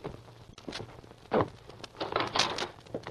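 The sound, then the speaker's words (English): An office door is opened by a man who rises from the chair at his desk, with a few clunks and a sweeping creak-like rustle, followed by soft shuffling movement, all fairly quiet with no one speaking. “He rose from the chair before his desk and opened the door.”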